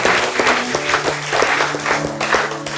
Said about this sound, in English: Have you received it? Clap like you have received it. Clap like you have received it.